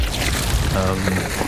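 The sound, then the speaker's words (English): A brief video game chime marks finding a clue that points toward where the boss is: a low, steady tonal swell that rises midway and holds about half a second over a constant wash of in-game rain noise. “So it makes a sound when I got the clue.”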